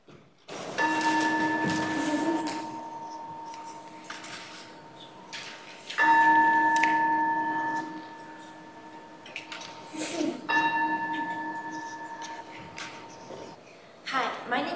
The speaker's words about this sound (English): Kylie will ring the bell to call us to worship